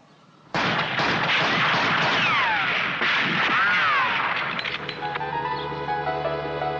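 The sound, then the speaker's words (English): A sudden burst of rapid rifle gunfire, five rounds rapid shot for the wings, loud dense cracks firing in quick succession with sweeping whines, giving way to a sustained electronic hum toward the end. No one speaks. “Shot for the wings there. Five rounds rapid.”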